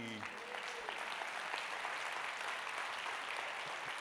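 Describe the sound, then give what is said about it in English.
An audience breaks into steady applause, a dense, even wash of many hands clapping that holds at a consistent loudness throughout, with no clear voices standing out. “First service didn't clap when I said that.”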